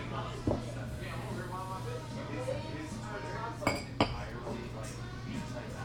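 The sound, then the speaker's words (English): Two sharp glassy clinks ring out close together near the end, like glasses touched in a toast, over a low steady hum and murmuring background chatter. “Cheers. Cheers.”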